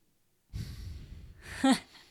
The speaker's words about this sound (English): I hope you can't hear the dog snoring in the background. He's really loud.